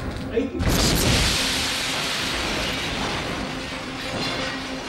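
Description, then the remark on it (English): A massive truck bomb explosion at the UN headquarters in Iraq bursts out suddenly after a brief moment of quiet, then gives way to a heavy, sustained roar and rumble that stays loud to the end. “This was where the bomb rigged in a truck went off. A massive explosion.”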